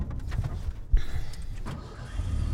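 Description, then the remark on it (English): An old Ford truck engine, hooked up to a hay trailer on a ranch to feed cows, cranks and catches, a sharp jolt followed by a steady low, rumbling idle with faint mechanical rattles, no voices present. “She hooks the old Ford up to the hay trailer,”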